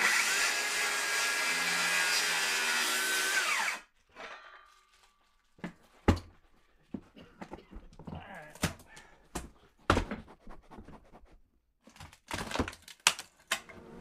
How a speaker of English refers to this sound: After Kroll targets a 2-foot by 4-foot area, it's time to cut into the floor. But first, Kroll uses puffs of cool smoke from a handheld smoker to distract and quiet the bees. Once they're calm, the cutting can begin.